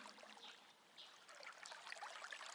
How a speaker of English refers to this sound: The sound of the flowing water is calming and healing, inviting you to sit by the stream and dip your feet in.